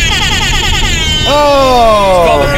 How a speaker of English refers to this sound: It's called a hip hop air horn. It's the greatest app.